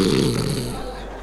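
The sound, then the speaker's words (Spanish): A voice mimics a man snoring in a church: one short, rasping, throaty snort that fades quickly, with no other sounds around it. “Bueno, yo le he contado aquí que en una iglesia había un hombre que salió roncando. Y se oía...”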